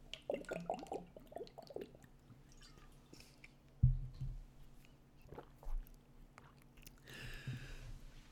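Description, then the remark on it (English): Quiet mouth sounds of someone sipping water, with small wet slurps and swallows, a soft knock partway through, and a breathy exhale near the end. No one speaks. “We have a sip of water and then we'll get into defensive line and finish up.”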